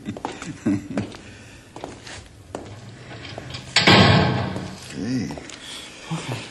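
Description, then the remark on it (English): A heavy door swings shut with a single loud slam and a brief rattling thud, while people talk quietly before and after it. “You, take no chances with that door, do you”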